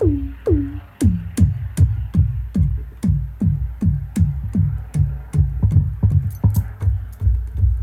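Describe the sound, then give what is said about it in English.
A short percussive synthesizer sound repeats in a steady pattern, about twenty hits, each a sharp click followed by a quick downward filter sweep into a low thud. No one speaks. “I might make, you know, a short percussive sound. I might just use the filter, actually.”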